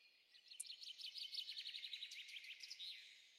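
A small pet bird, just woken from her nap, chirps rapidly and continuously, a bright, high twittering run of quick notes that stays fairly loud for a few seconds, with no talking.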